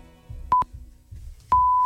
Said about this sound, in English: But listen to this perfect back timing. Beep, beep, beep. There you go.